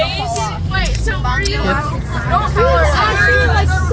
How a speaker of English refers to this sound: And I was the bus is starting moving. Alright, as we start moving, we see that the bus is relatively empty today because it is a Friday, which usually is weird, but usually a lot of people...